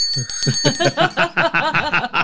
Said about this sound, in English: I'm sorry, I'm going to ring the bell on myself.